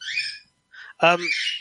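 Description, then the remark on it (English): Harsh, high-pitched squawks and calls from pet birds in short bursts, one loud, raspy shriek standing out, with no talking. “I'm sorry, my birds are getting upset because it's nearly bedtime.”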